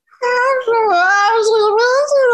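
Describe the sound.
A person imitates the drawn-out yowl their cat used to make, a loud, wavering, high-pitched wail that rises and falls over about two seconds, eerily close to a crying human voice.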